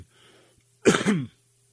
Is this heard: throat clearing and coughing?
yes